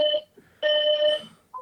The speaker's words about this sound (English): the hotel alarm just went off. Dead ass, dude. That's awesome. That is sick. That's great. God, that's is that the fire alarm? Is the place on fire? Yeah. Should we worry for your in safety? The hotel. Yeah, we're in Dallas.